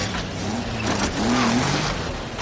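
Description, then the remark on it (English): A facility bus engine revs loudly and steadily, its drone rising in pitch for a moment before settling, with no voices. “It is a ridiculous scene, and then it gets even a little more outlandish, because basically what he does is he kidnaps his fellow patients using the facility bus.”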